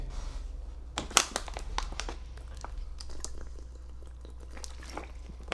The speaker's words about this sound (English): got my water break in. Hold on, let me get one more sip. Hold on, guys. Hold on.